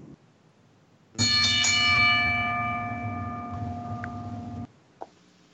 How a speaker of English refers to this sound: ring the bell.